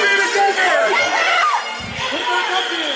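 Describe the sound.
A crowd disperses after flashbangs go off amid smoke, filling the air with overlapping shouts and chatter, some voices rising into high yells, a steady loud jumble of many people for about three seconds.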